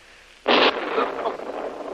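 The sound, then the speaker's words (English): A heavy explosion, not far away, bursts in abruptly after a moment of quiet, a loud, harsh blast that gives way to a long, rough rumbling tail that fades only slightly. “That was a heavy explosion.”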